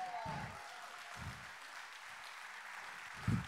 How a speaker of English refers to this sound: Man, if you're going to clap, you rather clap. Don't give me no golf clap. Don't give me no weekend golf clap.